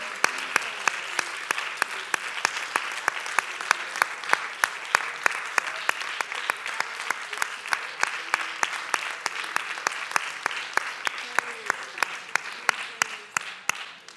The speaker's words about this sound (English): Oh, if we can just give them a hand clap of praise.